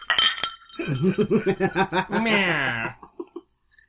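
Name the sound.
drinking glasses clinking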